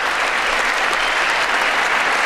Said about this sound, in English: Dude, they like to stand up and clap like simple bullshit.